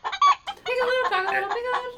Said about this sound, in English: Cackling chicken.